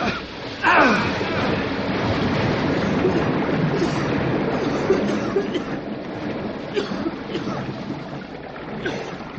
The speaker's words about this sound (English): If this place is full of water, it'll come rushing out in a big hurry. All right, pull. Yeah. It's moving. Come on.